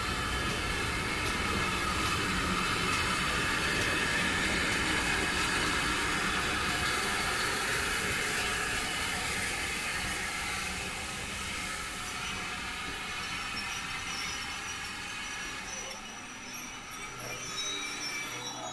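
A steam train, pulled tender first by the locomotive Foxcote Manor, rolls into a station on the Watercress Line with loud, sustained squealing brakes, a steady high-pitched screech over hissing and rumbling wheels that gradually eases as it slows to a stop.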